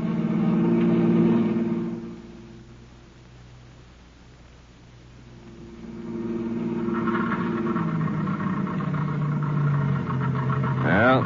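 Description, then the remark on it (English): A car engine sputters unevenly as it runs out of gas, its rumble dropping away for a few seconds, then coughing back to a rough, strained run. Fairly loud. “The end of the gas.”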